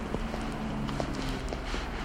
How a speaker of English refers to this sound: We see her moving. She starts moving faster. We hear her footsteps. She starts to run. She stops.